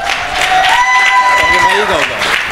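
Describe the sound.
A church audience claps steadily and loudly throughout, welcoming one of the church's marriage counselors, with scattered voices whooping and cheering above the dense wash of applause.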